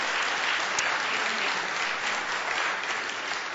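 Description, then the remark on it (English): A church audience claps steadily throughout to thank people doing ministry, a dense, even wash of many hands with no pauses or swells and no voices rising above it. “And so I want you to thank them with claps.”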